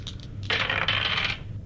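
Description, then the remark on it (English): A digital dice roll: a bright, rattling clatter that bursts in suddenly, tumbles for just under a second, then cuts off, with no voices over it. “I miss my real dice.”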